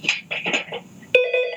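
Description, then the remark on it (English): A telephone rings with a series of bright electronic tone bursts, ending in a sustained warbling ring. No one speaks over it. “I've got a phone ringing.”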